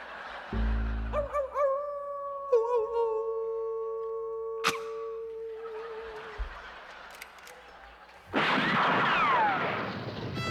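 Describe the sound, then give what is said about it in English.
Voices imitate coyotes howling on Riders Radio Theater: long, rising and falling wails overlapping, followed by a sharp crack, a stretch of rough, raspy noise, and then a loud, dense burst of sound. “The part of the third coyote will now be played by a non-union cat with a hairball.”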